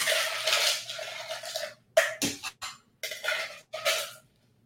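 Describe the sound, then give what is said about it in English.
A steady rushing hiss gives way to a series of sharp clinks and clatters as ice cubes are dropped one after another into a glass of freshly poured cocktail, with no talking. “And then I'm gonna put ice in the glass.”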